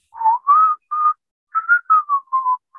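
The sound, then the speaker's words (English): A man whistles a short Christmas tune from a Corona beer commercial with palm trees, about eight clear, steady notes in a simple melody with a brief pause midway, fairly loud with no talking. “And it was with a bunch of palm trees, and it's this guy whistling. He's whistling like a Christmas song, like.”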